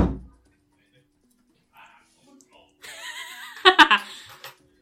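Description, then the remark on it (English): A door shuts with a single low, dull thump right at the start, followed by near silence and then a burst of giggling laughter toward the end. “Oh, I'll shut the door and see if it picks up.”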